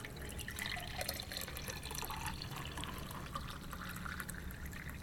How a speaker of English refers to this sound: Until then, you feel free to pour away, my man. Ready to pour. Here we go.